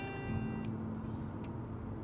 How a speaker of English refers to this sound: And update, coming past another car. Would you look at that?